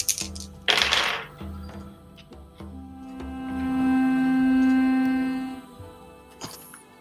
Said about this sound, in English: Oh my god, the dice. I didn't prep my dice. When you need 4 of them, I like to roll them all at once, so...